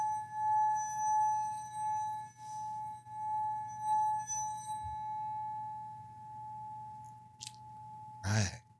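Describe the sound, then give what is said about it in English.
A bell rung during a chakra meditation rings out with a single clear, steady metallic tone that sustains for several seconds over a low hum, shimmering slightly before a brief clattering knock near the end. “Any hate coming towards TJ? Ring the bell.”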